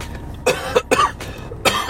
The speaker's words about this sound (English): Excuse me. Yeah, I don't mind that. If you hear a little my voice a little rasp or the cough, don't even trip. That's just the smokage, and not cigarettes either.